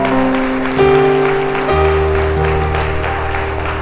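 A church audience claps loudly and steadily as applause for Jesus, the King of Kings, a dense wash of applause that runs the whole time over sustained keyboard chords shifting beneath it.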